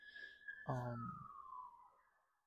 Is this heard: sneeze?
no